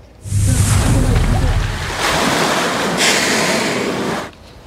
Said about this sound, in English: The small pod of humpbacks breaching the surface to bubble net, a unique way of feeding for the massive animals.